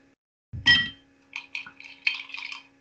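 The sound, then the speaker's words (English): Pieces of ice from blocks tumble into a glass of a room-temperature drink in sunny Southern California, with a loud initial clunk, followed by a series of bright, high clinks and rattles as the pieces settle over a couple of seconds. “I'm going to dump some ice. We're going to pour some more.”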